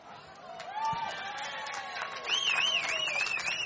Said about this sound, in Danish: Folk var ellevilde, står der i parentes hernede. Ja, folk klapper.